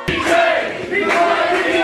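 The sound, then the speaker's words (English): A loud crowd erupts in sustained clapping and cheering as a performer is welcomed to the stage at KGUP Presents, a dense wash of applause with whoops and shouts rising over it, steady from start to finish. “I want you to put your hands together and welcome him to the stage. Big round of applause.”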